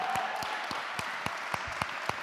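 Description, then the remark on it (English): A crowd at Redstone Church applauds steadily for its first deacon, a dense wash of many hands clapping with a few sharper individual claps standing out, moderately loud. “Let's just stop right there and give the guy a round of applause.”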